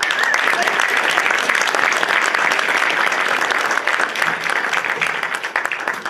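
An audience breaks into sustained applause for a Hall of Famer who has just come into the room. Many hands clap in a dense, steady wash that holds at a fairly even loudness for several seconds before tapering slightly at the end.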